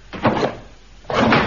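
Two empty drawers slide open one after another, each a short scraping, rumbling pull, separated by a brief pause with no talking.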